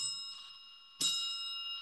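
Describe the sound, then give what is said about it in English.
A small bell rings with a bright, sustained metallic tone, a soft chime followed by a sharper strike that keeps ringing out. No voices, fairly quiet. “Every time you hear a bell ring, it means that some angel's just got his wings.”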